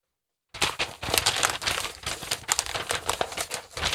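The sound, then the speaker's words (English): After a brief moment of silence, continuous paper rustling and crinkling begins, a dense run of crisp crackles and snaps that keeps going without any talking. “Oh, wrong paper. Careful, you don't want to get a paper cut.”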